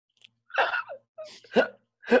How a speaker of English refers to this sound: I got the giggles. Oh man. You got the burps and you got the giggles. I got the burps, I got the giggles.